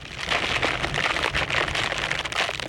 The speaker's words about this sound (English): On a cold New York day, the pitter-patter, well, it's more like a slushy rattling of rain and sleet, create this soundscape as they hit a window. … recorded these wet tunes as part of ….